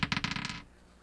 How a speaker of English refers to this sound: Yeah, and all right, I'm rolling a die. I put the names down on a piece of paper. I'm rolling a die.